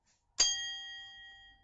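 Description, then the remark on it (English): A single bright strike of a small travelling hand bell rings out, its clear metallic tone lingering and slowly fading over more than a second. “I've got a travelling bell.”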